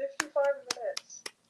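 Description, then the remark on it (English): A few scattered, sharp claps, roughly four, at an uneven pace, mixed with a voice making a humming or cheering sound between them, at the end of a question session. “Round of applause.”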